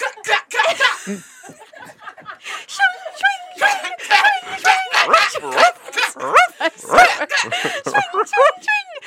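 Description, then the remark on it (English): A person mimics the barking of a dog named Georgie during a spoken zombie adventure game, with a rapid string of loud woofs and yips, mixed with chuckling and other voices throughout. “As you are continuing, Georgie, woof. Woof.”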